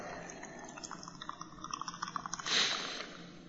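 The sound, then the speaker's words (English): Sparkling Appetizer drink is poured out of a can, a steady trickle with quick bubbly pops that swells into a brief fizzing gush near the end. No one speaks. “I normally do this with Coke cans, but I thought it'd be on my... I'm going to make you feel thirsty now. So I'm going to just pour that out.”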